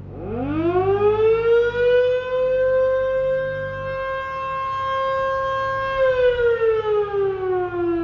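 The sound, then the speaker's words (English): The town siren of Meeker winds up from a low growl to a steady, loud wail, holds the long tone for several seconds, then begins to slowly wind down. No one speaks over it. “This week's Sound of Meeker, the siren.”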